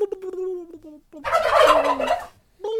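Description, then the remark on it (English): A turkey gobbles: a few high, wavering call notes lead into a loud, rapid rattling gobble lasting about a second, then another short call note. No one speaks. “It's turkeys, happening. Can I get a gobble gobble?”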